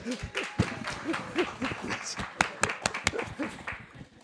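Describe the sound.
Audience applause with sharp, scattered claps and a crowd of voices cheering and calling out underneath, steady and moderately loud throughout.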